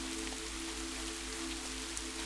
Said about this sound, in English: While listening to the rain, you are curious as to why this sound is so calming and soothing to you.